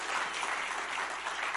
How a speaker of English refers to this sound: And at the end of it, even if we screw it up, you're going to clap wildly. Okay, you want to practice that? All right.